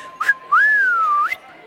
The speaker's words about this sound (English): Worried about this whole whistling thing. Oh, come on. Who cares if you can whistle or not?